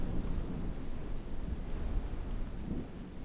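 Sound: wind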